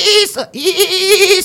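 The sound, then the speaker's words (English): A person mimics a dolphin call with a loud, squeaky, nasal voice: a short wavering burst, a brief gap, then a longer trembling, bleat-like tone with no talking around it. “That was dolphin. I pronounced it in its native tongue.”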